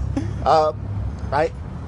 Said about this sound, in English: Sorry for the loud truck.